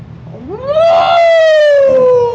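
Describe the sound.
A person imitates a wolf howl: one loud, sustained voiced note that slides up at the start, holds steady, then sinks gradually in pitch over about two seconds.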